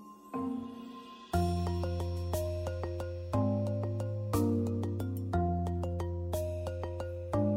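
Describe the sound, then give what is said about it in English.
A phone's melodic ringtone plays loudly for an incoming call, its bright chiming notes cycling through the same short tune several times with no one speaking. “And then after I got home, and then surely I start getting more calls.”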